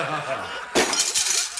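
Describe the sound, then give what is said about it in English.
A loud crash of a porcelain toilet shattering, followed by a second of scattered tinkling fragments, after a brief stretch of muffled voice. “I done shattered this motherfucker.”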